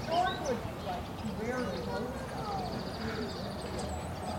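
Several birds sing and chirp in overlapping whistled phrases, clear, over a steady low rumble of traffic that stays in the background throughout, recorded on Good Friday, 2 April.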